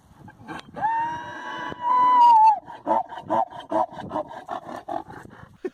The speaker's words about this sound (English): I really, really want to do a mule impersonation, but I don't actually know what a mule sounds like. Let's research donkey? This and we can do a brief sort of cameo. We'll get our audio engineer to insert mule here.